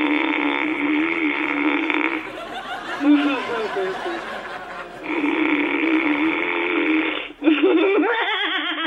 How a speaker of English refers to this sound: …, you promised you wouldn't snore. And the minute you closed your eyes, you started.